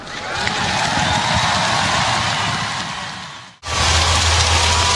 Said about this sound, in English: You can tell by the crowd reaction that the Marleau number 12 has been unveiled in the rafters right next to the Goodall number 10.